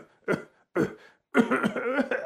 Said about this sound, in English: Inside was a middle-aged lady who didn't look very healthy. She was coughing too.